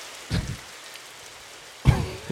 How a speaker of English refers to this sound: Some rain ambience.